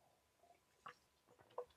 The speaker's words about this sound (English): Sips Topo Chico. That's not even really a Topo Chico. Oh, the 1877 mineral water.